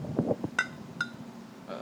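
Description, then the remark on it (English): Glasses of root beer clink together in a toast, two bright, ringing taps about half a second apart, fairly loud over a low background murmur. “That's a cheers, baby.”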